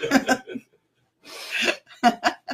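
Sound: sneeze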